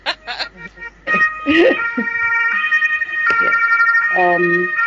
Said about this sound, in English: Can you hear the ambulance? Should I? I can. It's all right.